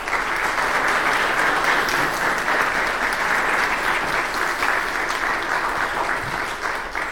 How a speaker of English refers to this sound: So at this time, if we could, in the most appropriate ARP way, give them a round of applause to show them our appreciation.